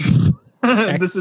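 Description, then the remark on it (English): A brief, low, rubbery squeak of a thigh dragging against a chair seat, fart-like, followed after a short pause by a loud voiced grunting or laughing sound. “And that was not a fart, by the way. That was my thigh against the chair.”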